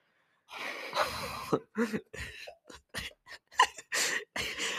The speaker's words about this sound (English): No, it's just stop breathing down the mics.